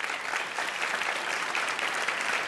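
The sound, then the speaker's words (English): An audience applauds steadily as a show of whether they find a speaker's point convincing, a dense wash of many hands clapping at an even, moderately loud level for a couple of seconds, with no voices rising above it. “I'd like to ask the audience, with a show of applause, whether you find that point convincing.”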